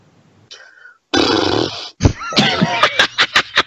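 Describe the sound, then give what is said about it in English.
A person does a vocal horse impression in place of a requested drumroll before a prize draw: a breathy snort, a long rough whinny-like blast, then a string of quick, pulsing neighing sounds with no words spoken. “He said a drum roll, not an impression of a horse.”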